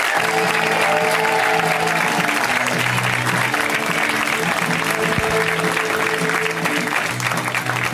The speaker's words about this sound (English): So you guys know what we do when it's somebody's first time. We get a big round of applause going for them. Make them feel comfy.